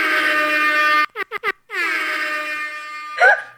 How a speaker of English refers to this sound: Did you know that that air horn sound is actually copywritten by somebody?